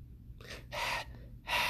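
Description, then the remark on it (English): A person imitates heavy, labored asthmatic breathing: several loud, raspy, wheezing breaths in and out in quick succession, with no talking. “That was a horrible impression about me breathing, but if I breathe like that, then I should probably get my lungs checked for asthma.”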